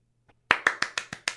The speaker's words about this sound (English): Too many claps, man.